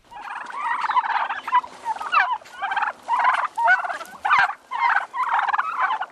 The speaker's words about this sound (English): They're the old black turkeys. The reason I go with heritage breed is because they're actually able to handle the weather outside.